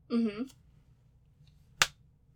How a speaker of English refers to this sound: I like the little rat-a-tat. I like the 3. I like the little triplet, and it sounds like there's some flesh in there. It sounds like there's some skin. Will you give me another little slap?